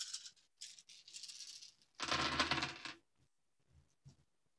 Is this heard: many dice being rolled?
yes